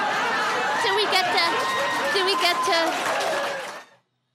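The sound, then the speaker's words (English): The audience at a nine-candidate debate bursts into laughter, applause and high fives after the question "Have you ever been arrested?", with voices whooping and chattering over a steady wash of clapping for about four seconds before it cuts off. “That is laughter, applause, and high fives from a question about being arrested.”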